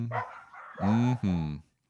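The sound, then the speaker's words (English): A dog gives a softer yelp that leads into two loud, drawn-out barks in quick succession, clear, with no talking over them. “The dogs even know that one.”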